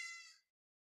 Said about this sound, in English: You looking so irritated with them cats. You hear them? I don't know if y'all hear them. They don't never need to come in this damn room like this. But the moment I'm in here like this, this whole podcast, I've been so distracted by them.